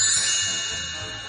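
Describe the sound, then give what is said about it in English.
A bright chime announcing listener mail time rings out alone, its sustained, shimmering high tones holding steady and then slowly fading over about a second and a half. “And without further ado, the chime says, listener mail time.”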